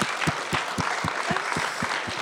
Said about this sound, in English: So those of you sitting down, if you have been affected by somebody else standing up, stand up. Wow. Give them a round of applause and say thank you.